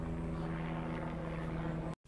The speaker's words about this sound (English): An airplane above, a reminder that there are things high up.